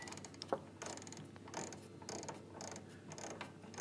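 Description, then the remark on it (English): A mechanical timer dial is turned with a continuous run of small ratcheting clicks. The clicks come in bursts with short pauses, and one sharper click stands out early on. “What about if I turn the timer?”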